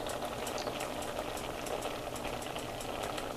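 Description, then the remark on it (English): Water bubbling at a rolling boil in a pot, with the heat turned back down and the fan turned off, a steady dense churn of pops and gurgles, fairly loud, with no voices over it. “Here, I'm going to turn the fan off so you can hear the bubbling easier.”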